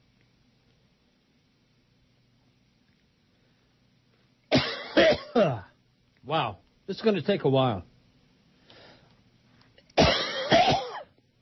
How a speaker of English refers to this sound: You ever get a coughing fit? All the time.